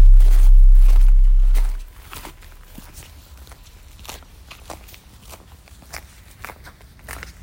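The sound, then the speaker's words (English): Footsteps crunch across the ground while first stepping onto the Creosalvela vineyard, in a steady, uneven rhythm of crisp scuffs, after a brief low rumble at the start; no voices. “I recorded first stepping onto Creosalvela.”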